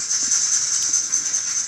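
A phone ringtone of a rattlesnake rattle: a continuous dry, high-pitched buzzing hiss, steady and fairly loud throughout, with no one talking over it.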